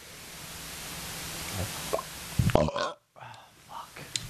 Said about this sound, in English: That was a tough burp. That would hurt.